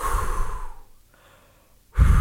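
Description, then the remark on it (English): A voice imitates heavy breathing, that of a basketball player concentrating at the free throw line: a long, loud breathy exhale that fades into a quiet pause, then a sudden strong inhale or puff of air. Exaggerated, with no words. “He's breathing in and out.”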